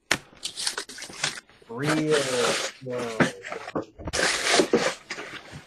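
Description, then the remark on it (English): Crinkly rustling of paper being torn and peeled open in several bursts as a gift package is slowly unwrapped, with a drawn-out playful groan from a voice in the middle. “The first layer of mine is already open, so I'm going to go real slow.”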